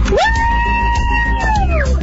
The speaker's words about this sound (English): Were the kids screaming because they're excited, or it's because you just about drove in the ditch?